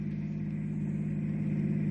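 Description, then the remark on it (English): A car engine drones steadily as the car comes in close during a reenactment of an accident, a low, even rumble that holds for the full stretch with only a slight swell, and no voices. “Well, they're coming in close now. Be ready to push that stuffed dummy in front of the car when I give you the word.”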